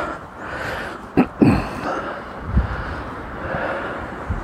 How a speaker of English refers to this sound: Oh, it is quite windy up here though. Got the microphone underneath my jacket. So I hope that you can hear me both through the cloth and above the wind.